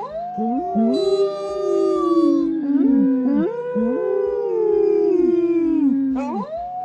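Outdoors, a small dog howls continuously in long, wavering, rising-and-falling cries, several overlapping pitches, loud and sustained for the full stretch with a brief yip near the end.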